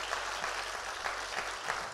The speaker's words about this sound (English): Clap your hands like you're getting better. Come on, clap real big. We're getting better.